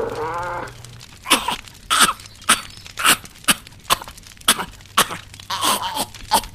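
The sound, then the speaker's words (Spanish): An angry big cat chokes and coughs. A brief tonal groan gives way to about a dozen harsh, raspy bursts in a ragged, uneven rhythm, fairly loud, with no talking. “El felino misterioso se ha atragantado y está enojado.”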